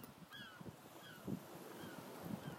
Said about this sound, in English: The seagulls are more than welcome to chime in. Guess what? They're gonna, anyway.